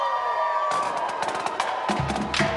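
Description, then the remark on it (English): San Francisco 49ers fans cheer and whoop in a continuous, lively roar at a pep rally outside the food court at SFO's Terminal 2. They wave red rally towels to send the team off to the NFC Championship game. Bursts of shouting and a few higher-pitched yells rise over the steady noise. “49ers faithful were out in force, waving red rally towels and cheering a festive party atmosphere outside the food court at SFO's Terminal 2.”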